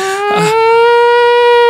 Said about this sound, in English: I think that's a tornado siren.